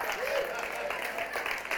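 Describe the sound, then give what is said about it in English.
A short burst of steady clapping from a small group for a painting just shown, a dense crackling patter that holds at an even level for a couple of seconds, with some voices mixed in. “Round of applause at any.”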